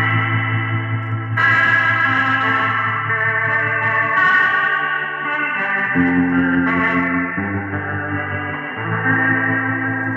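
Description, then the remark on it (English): A sustained, swirling electric guitar chord passage played through a pedal's rotary Leslie speaker effect with spring reverb, giving a rotating, warbling modulation and lush ambient wash, played steadily with no one talking. “This is one of my other favorite things to do with this pedal, which is turn on the Roto Closet. This is their Leslie speaker. Check this out.”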